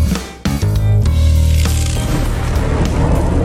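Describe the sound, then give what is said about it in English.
A loud lightning-round stinger: a sudden sharp crack bursts in, a low buzzing chord sustains for about a second, then crackling, fizzing noise carries on to the end. No one speaks. “When you hear that sound, it's the lightning round for the quick hits after the big news bits.”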